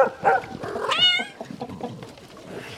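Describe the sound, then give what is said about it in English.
A cat meows a few times in quick succession, with rising, wavering harmonic cries, the loudest near the middle, followed by softer trailing vocal noises. “Oops, I think the dogs and cats ate it.”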